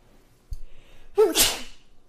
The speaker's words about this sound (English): Sorry, I feel like I'm going to sneeze.